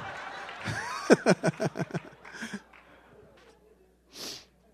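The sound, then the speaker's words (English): A voice acts out an exaggerated, fake sneeze, followed by a quick run of rhythmic, snorting chuckles and a short breathy hiss near the end. “Achoo! Oh, there it is.”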